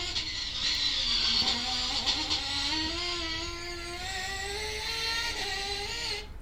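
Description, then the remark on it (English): A high-pitched car engine screams at high revs, its whine holding steady and slowly climbing in pitch for several seconds, loud with a buzzy, race-car edge and no voices. “Sounds like an RC car, is what that sounds like. That's like an F1!”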